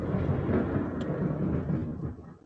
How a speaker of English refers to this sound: That's definitely, oops, some thunder behind me there.